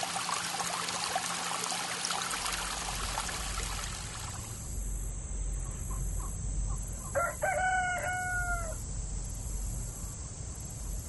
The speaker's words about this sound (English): A lot of you requested to hear the peaceful sounds of nature, a babbling brook, chirping birds, even a rooster crowing.